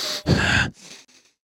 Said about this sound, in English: she's got that drunk breath too, dude. That heavy breath.